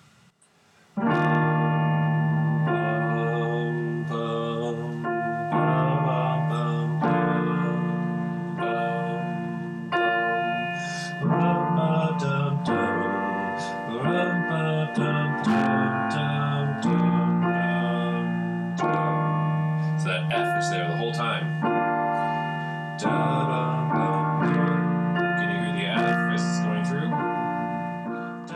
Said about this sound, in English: Listen to me play through this and see if you can hear the F being there the whole time, and I'll hum the melody so you can hear where we are in the song.